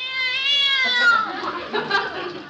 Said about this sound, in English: You go around the other side and I'll shoo him from here. Go on, cat. Scat!